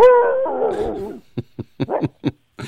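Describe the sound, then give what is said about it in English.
A dog lets out a drawn-out, wavering howl, then fires off a quick run of about half a dozen short, sharp barks, fairly loud, with no one talking. “I'll be thinking, how come when dogs bark at night, they have to get that last bark in?”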